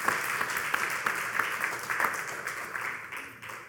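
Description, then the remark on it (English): A church audience claps their hands together for God in a morning service, a sustained, dense burst of applause, many overlapping claps forming a steady crackling roar with a few sharper individual claps standing out. “Give God a hand clap.”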